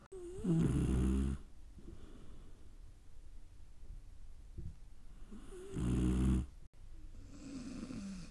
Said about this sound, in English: Feel free to share what the Holy Spirit places on your heart from His word and ignore the snoring dog behind me. My sweet little beagle decided to sneak into my room to take a nap.